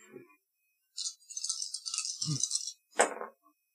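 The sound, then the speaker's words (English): Dice rattle briskly in a cup for over a second, then clatter out onto a hard surface with a sharp final knock, fairly loud, with no talking; the roll comes up fives and a nudge. “let's see how Zach's roll goes. Okay. Come on, dice.”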